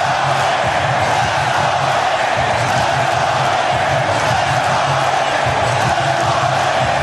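A huge arena crowd of about 15,000 at a basketball game in Charlotte roars continuously, the dense wall of cheering holding steady and loud throughout, with a pulsing, rhythmic chant rising and falling beneath it.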